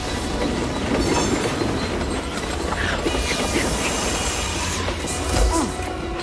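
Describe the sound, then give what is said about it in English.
A runaway train with nobody driving it rattles loudly along the rails at excessive speed, a dense continuous clatter of wheels with metallic screeches and a sharp bang near the end. “We're going way too fast. Nobody's driving this train.”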